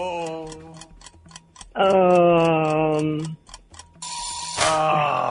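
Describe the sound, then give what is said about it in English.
A quiz timer ticks in a steady, rapid rhythm, then a loud, flat buzzer blares for over a second, followed by a harsher, noisier burst as the ticking carries on. “There's the buzzer.”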